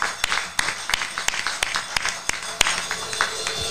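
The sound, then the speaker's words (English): A few people give a hand clap of praise, clapping in loose, uneven rhythm for a few seconds, sharp bright claps overlapping into brief scattered applause with no talking. “Give a hand clap of praise.”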